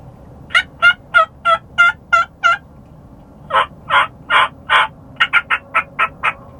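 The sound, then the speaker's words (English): Hen turkey yelps made on a mouth call held toward the front of the mouth: a steady run of seven clear notes, a pause, then four drawn-out yelps and a quicker burst of six, loud with no talking. “It's a cleaner, more passive sound in hen.”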